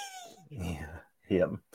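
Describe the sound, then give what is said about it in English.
A kitten gives a thin, high meow that slides downward, followed by two short bursts of a person's voice, the second one louder. “This one, had to babysit my daughter's kitten as she requested proof he was okay, so I sent her this.”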